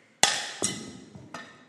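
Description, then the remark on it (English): A clay pot used as a prop in a sermon smashes with a sharp crack, followed by two more clattering impacts as pieces strike and scatter, each burst bright and brittle before fading into a hollow tail. “Yeah, shattered.”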